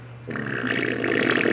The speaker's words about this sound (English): I'm about to freaking farted. My bad. Farted in the restaurant.